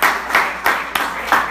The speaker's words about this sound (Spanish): Vamos a darle un aplauso fuerte al Señor Jesús.